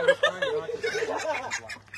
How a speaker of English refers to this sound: That's chicken's escaping. We got an escaper.